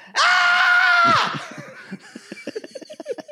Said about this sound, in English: She threw that pillow so high in the air. Just, woo! I'd never heard, like, that's like back in the 90s when they were doing primal scream therapy. Oh, that's what that sounded like.